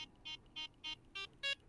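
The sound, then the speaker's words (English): A string of six short electronic tones from a Circuit Playground Express board running a CircuitPython program, evenly spaced and stepping upward in pitch like an arpeggio of a dominant chord, played as the board is tilted. Each is a bright buzzy square-wave beep, with the last one loudest. “It'll do this dominant chord that it's doing now, and it'll also do blues arpeggios.”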